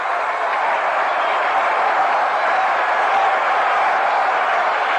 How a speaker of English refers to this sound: And now the partisan St. Louis crowd ready to roar on every pitch